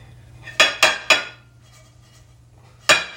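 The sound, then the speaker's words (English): A pan bangs against a plate three times in quick succession as someone tries to get a sandwich off it, sharp clattering hits, followed by a pause and one more loud clank over a low steady hum. “Just banged the pan on the plate trying to get the sandwich off.”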